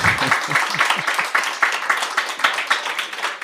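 A small live audience claps steadily to welcome a guest onto a stage sofa, a dense patter of hand claps lasting the whole stretch at moderate loudness, with a faint voice briefly audible underneath at the start.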